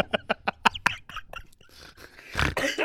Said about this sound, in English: Yo, that is a smoker's cough.